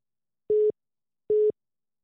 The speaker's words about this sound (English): Did you hear that? No, I just got another call on my work number.